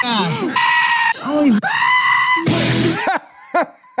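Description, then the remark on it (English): A screaming hairy armadillo gives its defensive scream: loud, shrill, wavering squeals that rise and fall and repeat almost without pause, piercing, with no talking over them. “His defense mechanism is to make this wild screaming noise. Well, just be warned, it's very loud and it doesn't stop.”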